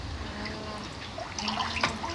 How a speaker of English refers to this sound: Oh, it started to rain. It's a little shower.